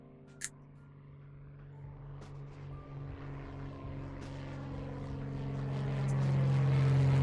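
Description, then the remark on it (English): A propeller airplane drones steadily overhead in the sky, carrying an advertisement at its tail, its buzzing engine growing gradually louder as it approaches, with a brief faint click near the start and no voices. “Camera cuts to an airplane in the sky.”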